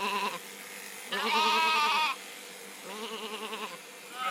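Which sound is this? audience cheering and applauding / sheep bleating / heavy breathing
sheep bleating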